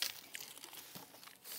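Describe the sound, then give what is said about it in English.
Dry Cheerios cereal pours into a bucket in a steady, crinkly rustle of many tiny pieces tumbling and ticking together, fairly quiet and continuous for under two seconds with no talking. “So I'm going to pour all those in there, okay?”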